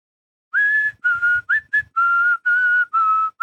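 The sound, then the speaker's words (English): A person whistles a short, clear melody of about eight sustained notes with brief gaps between them, fairly loud, the tune whistled while walking by Daryl Hannah's character Elle Driver in the film Kill Bill. “That scene where she's walking whistling.”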